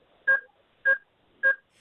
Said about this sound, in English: you just heard a bit of beeping there.